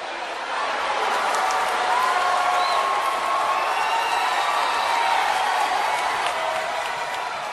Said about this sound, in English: The crowd blew up the place. I love this Cena.